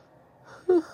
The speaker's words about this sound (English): God, there I go with yawning again. I haven't yawned all day. And then, of course, I get on this thing and start yawning.